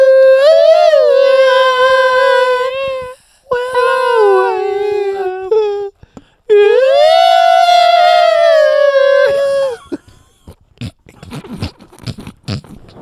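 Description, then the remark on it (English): Many neighborhood dogs: three long, wavering howls rise and fall in close succession, loud, followed by a burst of short, scattered barks and yelps that trail off. “Every dog in the neighborhood. Like, what the fuck is that? What's all that barking?”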